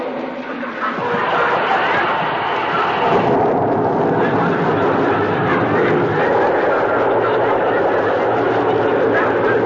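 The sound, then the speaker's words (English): One tablespoon of soothing syrup fizzes in a glass of water with a loud, steady rushing hiss that starts abruptly and roars on without a break for several seconds, dense and rough like a torrent of bubbles. “Now, listen to it. Fizz.”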